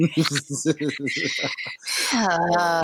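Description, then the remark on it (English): A voice imitates pigeons: a quick, rhythmic run of about eight throaty coos, then a long, loud, wavering squawk. Fairly loud, with no other talk. “Let the pigeons loose.”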